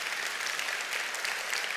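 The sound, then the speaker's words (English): Audience applause: a dense, steady wash of many hands clapping at once, holding an even level throughout the short stretch with no voices over it. “I don't know if they're in the room, but I want to applaud their example today.”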